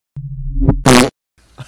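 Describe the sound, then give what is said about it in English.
A cartoonish fart sound effect: a low, buzzy tone with a rising squeak, cut off by a short loud burst, then faint trailing noise. No one speaks. “I'm putting a sound of my choice in the second time. It might be a fart noise.”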